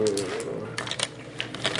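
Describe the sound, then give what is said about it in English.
Three dice being picked up and handled: a run of small, sharp clacks and rattles scattered through the moment, with a brief murmur of a voice at the start. “Why are you taking 3 dice?”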